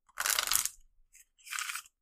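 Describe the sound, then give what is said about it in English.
Two bursts of crisp, rustling shuffling of a 'Who's the Deadliest? Predators' card game deck of deadly animal cards, a longer riffle followed by a brief flick and a shorter second shuffle, with no voices over them. “It's a card game, but it's basically a deck of deadly animals. And I will shuffle it up, draw one out, and see what we get to rank today.”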